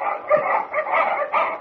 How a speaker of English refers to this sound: With their presence revealed by the barking of Batiste Huskies